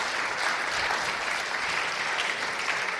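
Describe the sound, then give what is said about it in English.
Steady applause from an audience after people shared their testimonies, a dense wash of many hands clapping at an even, fairly loud level for several seconds with no voices rising above it. “And you could keep clapping. Go ahead, keep clapping.”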